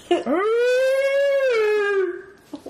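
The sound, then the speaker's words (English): A person's voice imitates sirens, copying the scene in Harry and the Hendersons where Harry sticks his head out the window, with one loud, sustained wail that swoops upward, holds a steady pitch for about two seconds, then slowly sags before cutting off. “I just assumed he was driving the water truck during the scene where Harry sticks his head out the window and does the sirens.”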